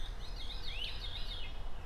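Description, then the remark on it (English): A veery, a member of the thrush family, sings a fluty, spiraling descending musical trill that swirls downward, fairly faint, over a steady low outdoor rumble with no voices. “Is it a veery? It is.”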